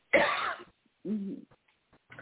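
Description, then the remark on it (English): A single harsh cough bursts out, followed after a brief pause by a shorter voiced, throaty sound, then quiet with a faint rustle at the end. No one speaks. “I can tell that cough is a relief.”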